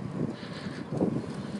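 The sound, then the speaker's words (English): Steady wind buffets the microphone on a cold, windy day while riding a bike along a bike path to work, a loud low rumble that swells and dips in gusts across the whole moment, with no voices. “It's a little windy and a little cold.”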